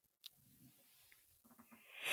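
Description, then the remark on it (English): A drawn-out yawn: a soft breathy intake, a low wavering groan from the throat, then a rising airy exhale that grows louder at the end. No talking. “I'm having a yawn fest today.”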